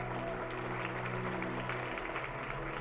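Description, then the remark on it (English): An audience claps hands in steady, dense applause that holds at an even level throughout, with a low sustained hum underneath and no talking. “Come on, let's give the Lord a big hand clap today.”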